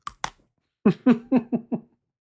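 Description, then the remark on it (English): Two quick, sharp crunches of a sugar cookie with a candy-glass center being bitten right next to the microphone, then a pause and five short, rhythmic voiced murmurs like appreciative hums. “my first bite I'm going to do right here next to the microphone, because you have to experience the insanity of this thing”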